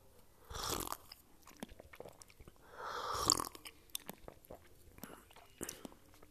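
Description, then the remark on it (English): Two soft slurping sips of tea, one early and one about halfway through, with small clicks and mouth noises scattered between them amid quiet. “Can I take a sip of tea?”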